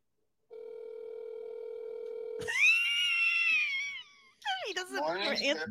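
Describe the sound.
An outgoing phone call's steady ringback tone hums for about two seconds, then cuts off as a loud, drawn-out voice answers, followed by talking.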